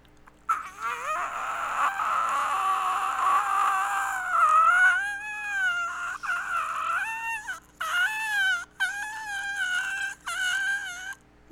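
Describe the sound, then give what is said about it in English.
A person in a group taking turns doing quiet screams gives a stifled, quiet scream: a strained, high, wavering vocal squeal held for several seconds, then broken into a string of short choked bursts, with no talking. “Yeah, okay, let's go in a circle at first, and then we'll all do it together.”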